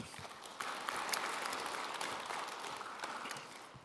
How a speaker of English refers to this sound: Would you give Scott a round of applause?